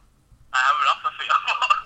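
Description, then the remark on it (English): A phone rings with a bright, warbling electronic ringtone, an incoming call from Joshua, that starts abruptly and keeps trilling in quick pulses, fairly loud, with no one talking over it. “why is Joshua ringing me?”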